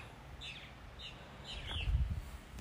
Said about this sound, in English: Do you hear all those birds?